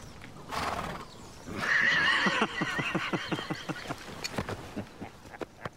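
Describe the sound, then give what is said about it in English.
A horse gives a loud whinny, followed by a series of rhythmic clip-clopping hoofbeats that carry on steadily to the end, with no voices present, as King Robert Baratheon's procession rides into Winterfell in the Game of Thrones pilot. “Back in the day, King Robert rode into town on a horse.”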